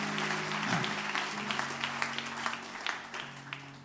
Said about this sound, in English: Clap your hands unto the Lord as you're being seated.